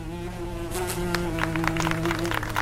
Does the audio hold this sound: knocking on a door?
no